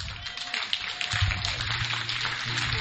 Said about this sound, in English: No, this clap is too small. Give a shout out to the Lord!